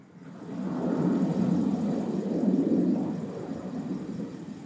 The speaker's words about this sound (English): Plane.